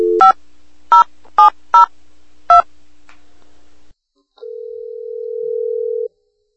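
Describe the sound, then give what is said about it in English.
A phone dials out with five short multi-tone keypad beeps in an uneven rhythm, followed after a brief pause by a steady ringing tone that holds for almost two seconds. Clear, with no voices. “it turns out that I did forget to ask Duncan something, so I actually have to call him on the phone”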